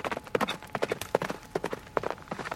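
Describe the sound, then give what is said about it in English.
A horse, frightened by a man's screams, gallops off into the night over Cooper's Bridge into Middletown, its hooves pounding in a quick, uneven rhythm, a steady run of sharp clip-clop strikes at moderate loudness with no voices. “horse was frightened by the man's screams that he then took off into the night, back over Cooper's Bridge into Middletown, and ran faster than it had ever run before.”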